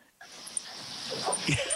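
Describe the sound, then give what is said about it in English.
A dog whimpers and lets out a short bark near the end while going at its owner during an interview, over a steady hissing background noise. “Is your dog attacking you right now?”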